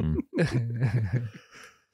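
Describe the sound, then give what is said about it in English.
A person lets out a long, voiced yawn, the pitch wavering and sliding down before it trails off into quiet, with no one talking over it. “That's your third yawn on this podcast.”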